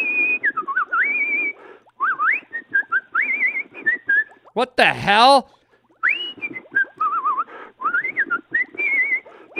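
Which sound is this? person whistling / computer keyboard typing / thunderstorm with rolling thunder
person whistling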